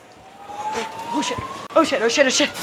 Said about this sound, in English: Yeah, the smoke detector. Went off the second. Yeah. You hear smoke detectors go off.